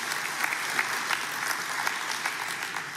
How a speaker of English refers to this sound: That's a bad little golf clap for that. Come on now.